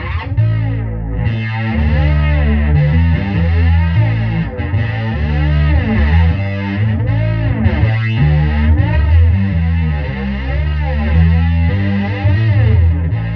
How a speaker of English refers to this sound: This is the Jet Fuzz, so this is the Worm Audio, or the Roland Jet Phaser on this.